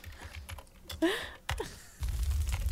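Fast, busy typing on a computer keyboard, a rapid clatter of keystrokes with a couple of sharper knocks, and a low steady rumble rising underneath near the end.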